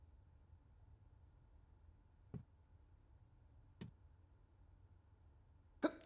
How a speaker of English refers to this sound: I have to sneeze, everyone. You're going to hear it.